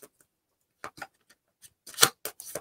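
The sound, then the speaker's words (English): Tarot cards, 22 major arcana from a partial deck, being shuffled for a reading: scattered soft papery flicks at first, then a quicker, louder flurry of riffling and swishing toward the end, with no one talking. “I'll just shuffle the cards up until you tell me when to stop.”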